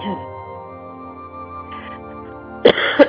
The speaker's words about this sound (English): excuse me, I'm going to cough.